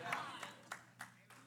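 A handful of scattered claps from an audience, roughly evenly spaced and fairly faint, as if a few people applaud briefly.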